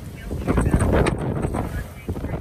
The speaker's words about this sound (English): she can still hear the wind. It's very loud. Winds are whipping through the town, right? There's moments where it dies down and then it comes back. Last week, if you watched videos of the California wildfires spreading, you could hear these gusts.